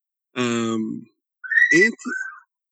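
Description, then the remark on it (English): A few birds chirp in short, clear bursts: a buzzy, drawn-out call followed by higher whistled chirps that rise and fall, with no talking over them. “Even the birds like it.”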